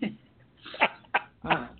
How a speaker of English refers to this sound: I had a cough. I said his name, but I coughed it. Sorry, guys. I had a big cough.